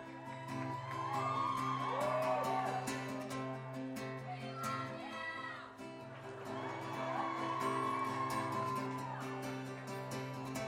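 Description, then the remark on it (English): A concert audience keeps up a steady roar of yelling and whooping, shouting that they love the performers, with rising and falling shouts swelling twice over a constant, dense wall of voices, loud throughout. “It's so hard to start a song when everyone just keeps yelling that they love you.”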